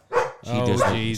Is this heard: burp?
no